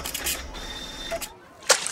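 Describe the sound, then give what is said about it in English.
A printer whirs and churns out a page of a report, a steady mechanical buzz with a thin high whine, ending in a brief sharp clack near the end. “Printing report.”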